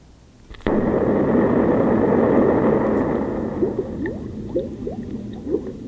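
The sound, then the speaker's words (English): A sudden burst of dense, rushing liquid sound gives way to steady bubbling, with rising gurgly pops breaking the surface repeatedly toward the end, fairly loud with no voices. “Oh, bubbles? Yeah, it's bubbles.”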